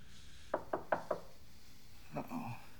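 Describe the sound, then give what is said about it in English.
Four quick, evenly spaced knocks rap on a door, fairly crisp, followed by a soft, muffled rustle a moment later. “All right, hey, go get the door.”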